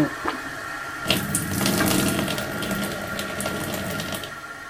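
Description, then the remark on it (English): Water gushes steadily from an overflowing toilet after its chain is pulled, starting with a sudden surge and continuing as a constant splashing rush, with no voices. “It still overflowed.”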